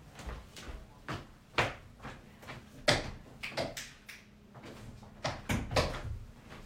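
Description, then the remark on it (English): A door being closed at home, heard as a series of sharp knocks and clicks from handling and the latch, spread irregularly over several seconds. “Kids in particular, hang on, I'm just closing my door because I got some noise here.”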